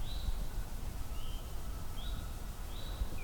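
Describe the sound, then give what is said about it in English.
Faint birdsong from a northern cardinal, pine warbler and eastern towhee in the background: a few short, high chirps spaced out over a steady low rumble of outdoor background noise. “Still in the background, northern cardinal, pine warbler, eastern towhee.”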